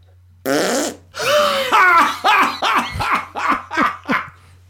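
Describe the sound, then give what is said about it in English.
At 7 a.m., just after waking, a voice blurts out a loud, raspy imitation of a fart, then breaks into several bursts of rhythmic laughter. “And like, he literally just farted louder than fuck, starts laughing, then we're laughing.”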